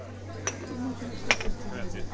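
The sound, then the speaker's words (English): A bustling counter at the busy bar of Café Sant'Eustachio, an old-school coffee house in Rome, on a rainy day, baristas hustling to fill orders; a few sharp clinks of cups and dishes ring out over a steady low hum and murmur of background chatter. “I join the other refugees from the rain at the busy bar. Baristas hustle to fill orders.”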